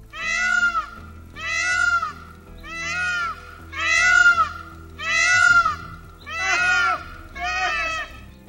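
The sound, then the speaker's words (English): Peacock calls in a Houston neighborhood ring out seven times in a steady rhythm, each a loud, wailing, meow-like cry lasting about a second, with brief gaps between and no talking. “She's looking out for peacocks.”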